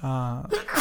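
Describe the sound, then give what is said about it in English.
A single fairly loud sneeze: a short voiced intake rising into a sharp, breathy burst of noise at the end. “Bless you.”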